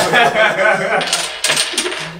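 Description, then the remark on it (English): Hard game pieces clatter and click continuously as they are shuffled across a tabletop, a dense, fairly loud rattling with a few sharper knocks near the end. “Nothing left on the table. Damn, both your numbers is better. I shuffled.”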